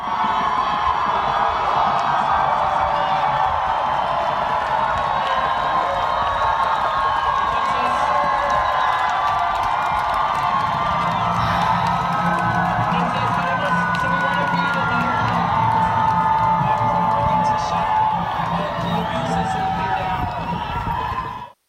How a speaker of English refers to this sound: This was Friday night outside an ICE detention center in Aurora. Several hundred people were reportedly chanting, "Close the camps and let them all in." Here's the raising of the Mexican flag in Colorado.